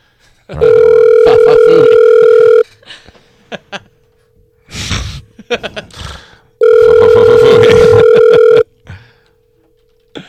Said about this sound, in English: Tell her to answer the phone.